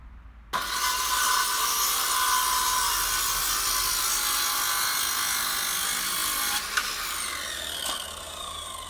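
A circular saw starts abruptly and cuts through wood with a loud, steady, hissing roar lasting several seconds, a brief knock near the end, and no voices; the saw is being used at about 10 o'clock at night to build an extension.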